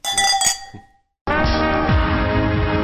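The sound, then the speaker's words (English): A couple of bright glass clinks ring out in a toast at a newly opened restaurant in Newcastle West, their tones fading over a second; after a short silence, loud full-band music kicks in. “On that note, I think we'll finish off with a cheers to the Silver Room.”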